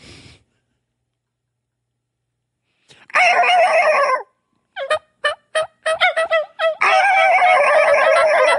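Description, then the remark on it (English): A turkey call imitates a hen's soft tree yelp, made to get a gobbling tom to answer before fly-down: a brief raspy run, then a series of short clipped yelps and another longer raspy burst, fairly loud with no talking. “I may tree yelp again and see if I can get him to spark off on that yelp.”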